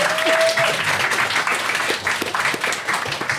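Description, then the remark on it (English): An audience applauds a guest sitting on stage, steadily, a dense wash of many hands clapping at an even loudness throughout, with a brief thin tone audible near the start. “Can we have a round of applause, please, for Claire?”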